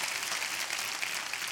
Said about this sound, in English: Come on, if you believe it, give God a great hand clap of praise in here.